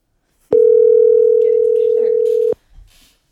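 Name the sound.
phone call ringing tone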